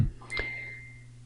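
signal or alarm, phone notification beep

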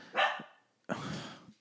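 animal, dog barking

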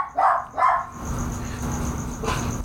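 animal, dog barking

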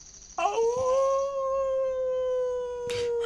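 animal, wolves howling

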